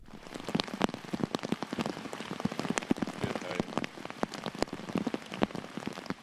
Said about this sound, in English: To Australia now, where at least six people have been killed in Queensland due to flooding, as the Australian state braces itself for another day of rain on Sunday.